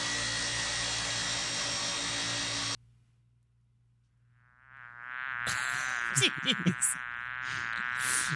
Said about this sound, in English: Coming up next, a single bee.